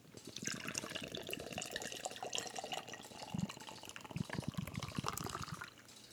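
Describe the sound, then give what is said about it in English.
Cream ale pours steadily into a glass for several seconds, a continuous splashing, gurgling stream with fizzy bubbling that carries on until the pour stops near the end. “I don't even know how I did that. Good pour.”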